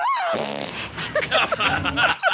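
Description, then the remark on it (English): A long, loud, raspy fart from a woman during a chiropractic adjustment rips out, buzzing and sputtering for about two seconds with a wet, fluttering texture, followed by a few quieter bubbly pops at the end. “God, she forced a fart out on that one, didn't she?”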